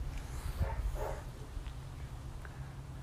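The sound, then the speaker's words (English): Dogs bark a couple of times early on, faint and muffled, then fade into a steady low hum with scattered soft background noise. No one speaks. “Do I hear dogs barking?”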